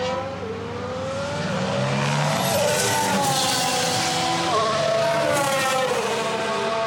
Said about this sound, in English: V6s do sound a lot better in person than they do on TV. I still don't understand why they haven't dealt with the audio balancing for those engines. You really need to go to a track of some kind to hear the V6s roar in anger, and it's very, very nice.